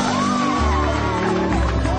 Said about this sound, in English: The biggest round of applause so far